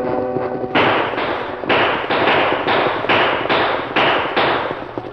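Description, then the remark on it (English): A rapid volley of loud gunshots, roughly ten sharp cracks fired about twice a second, each with a short ringing tail, as outlaws ride out of the brush shooting over travellers' heads and stopping their wagon horses. A brief tonal sound comes before the shooting begins, and no one speaks. “Tom Bancroft and Joe Boonton were caught unprepared when the outlaws rode out of the brush, shooting over their heads and dragging the wagon horses to a stop.”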